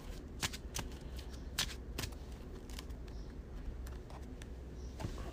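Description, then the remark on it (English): A deck of cards being shuffled as a card is shuffled into a player's deck during a card game, a series of quick papery riffles and snaps at an uneven pace, fairly quiet with no voices. “So let's grab the Mind Over Matter. Shuffle that in.”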